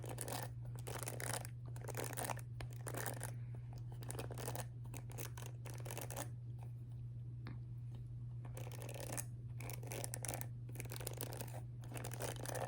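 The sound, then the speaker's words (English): A wet brush, a shower hairbrush, drawn repeatedly through a wig's hair, making soft, scratchy bristle strokes in an uneven rhythm over a steady low hum, with no one speaking. “I'm gonna brush her a little bit.”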